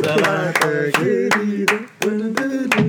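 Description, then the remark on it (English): Brief clapping for a friend's birthday: several sharp claps land in a steady rhythm about every half second, fairly loud, over a continuous voiced humming tone that carries between them. “Let's get a quick clap for him.”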